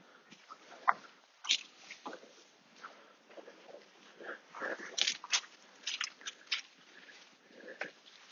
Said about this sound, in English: I hope you're enjoying the sound of quite heavy stones falling into the bushes, going quite randomly. That one hit another stone, there are some stones out here.